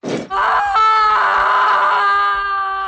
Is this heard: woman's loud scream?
yes